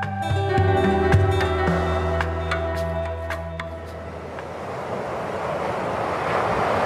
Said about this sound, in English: Everywhere in the resort you hear the waves. You always have this rhythm of the waves.